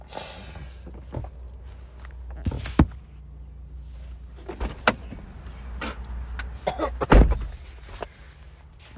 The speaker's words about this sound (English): As you can hear, I open my door.